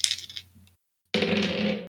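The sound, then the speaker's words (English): Dice clatter across a hard tabletop in two separate rolls for two arrow shots in a tabletop role-playing game, the first a quick rattling tumble landing a 3, then a brief pause before a second, fuller rattle landing a 4. No voices. “You going to do me like that, Dice?”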